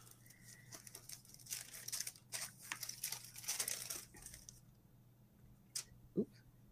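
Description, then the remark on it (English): Paper wrapping being unwrapped, with fairly loud crinkling and rustling bursts for several seconds, then a pause and a couple of brief handling noises. “Oh, this came wrapped in some paper.”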